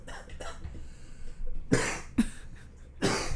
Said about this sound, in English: That cough didn't sound too bad.